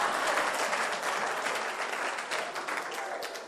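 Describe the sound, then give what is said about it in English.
An audience in a church claps steadily together for the preacher, a dense crackle of many hands that stays loud and even for a few seconds before tapering slightly, with no voices over it. “Look, I've not preached in a church that they are clapping for me before. Please clap for me again.”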